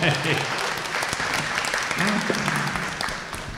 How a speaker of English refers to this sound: let's give him a clap.